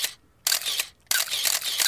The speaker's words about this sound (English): All these idiots snapping pictures.